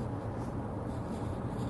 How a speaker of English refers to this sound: Yeah, this pencil is no longer marking.